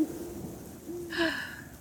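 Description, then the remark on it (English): An owl hoots twice, low and steady, each call held briefly, soft against a background of rain and rumbling weather. “An owl hoos nearby.”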